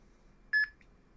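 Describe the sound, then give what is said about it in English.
A short electronic beep from a talking label pen as it records a message onto a medication bottle label, one clear tonal bleep followed by a faint, brief second chirp, heard alone over a quiet low background hum. “So you could hear the beeps as I was recording, I think it worked.”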